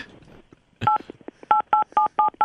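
A quick series of phone keypad tones played on a phone beeps out a short tune, an attempt at the Outback restaurant jingle, about six evenly spaced dual-tone presses after a brief faint rustle, fairly loud with no talking.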